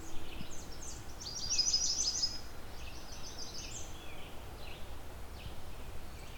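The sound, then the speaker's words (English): An American redstart warbler sings a brief series of high, thin notes over steady outdoor noise, with other faint bird calls around it. “They're fairly widespread warbler for this region.”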